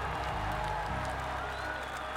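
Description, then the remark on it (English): A large stadium crowd applauds steadily, a dense, continuous wash of clapping with faint scattered voices mixed in, sustained and fairly loud throughout, during the opening ceremony of the 19th Winter Olympics in Salt Lake City, Utah, as ice skaters carry flags of previous host cities. “The crowd applauded for locations like Lake Placid, New York, St. Moritz, Switzerland, Oslo, Norway, and more.”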